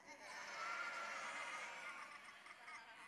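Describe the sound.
A crowd of children and adults bleats together like sheep, one long wavering baa held for about three seconds at a steady, fairly loud level, with no other talking.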